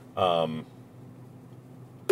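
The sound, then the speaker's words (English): A phone rings for an incoming call: a short, bright, tonal ring, then a pause and one loud, sharp electronic beep at the end. No one speaks. “Excuse me, just got a phone call.”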